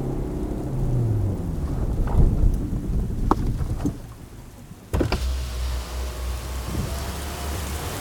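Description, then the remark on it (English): Steady rain hisses around a car as a man drives home from work in a rainstorm and waits at a traffic light, low thunder rumbling, with a motorized window whirring partway through and a sharp knock near the middle. No one speaks. “Ed Cox was driving home from work in a rainstorm”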